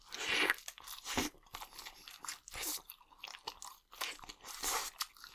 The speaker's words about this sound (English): We gotta turn up the smacking a little bit.